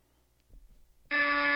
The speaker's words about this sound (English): It was so wrong on both of your parts that really? I had to change the incorrect sound to a buzzer.